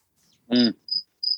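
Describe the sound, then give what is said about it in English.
A cricket gives two short, high-pitched chirps, clear, following a brief louder buzzy sound; otherwise the surroundings are quiet. “This is the OK Podcast featuring a cricket.”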